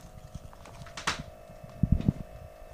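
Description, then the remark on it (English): A faint, steady mechanical whine of an air pump putting air into a tire drones throughout, with a sharp click near the middle and a few soft thumps toward the end. “Somebody's probably putting air in their tire.”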